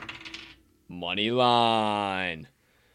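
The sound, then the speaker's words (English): A die clatters briefly as it rolls and settles, then a loud, sustained tonal blare rises and holds for over a second before cutting off; the die is rolled to pick a sports betting line. “Unofficially, Grand Canyon Antelopes Moneyline for the Moneyline Dice.”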